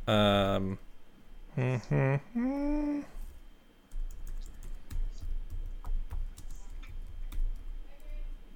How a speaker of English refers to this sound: Well, now people are going to hear me typing. Here we go. I'm going to bring this up. Of course, it's not my keyboard's not as claggy as yours.